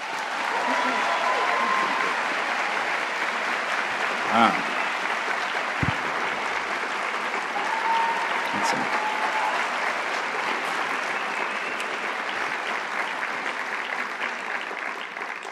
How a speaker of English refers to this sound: That's some crazy shit right there. That's a lot of people. And y'all are applauding.